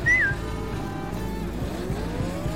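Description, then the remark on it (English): A car engine roars at full power, loud, its whine climbing steadily in pitch as it strains harder, with no voices over it. “Ruby, maximum power to the engines.”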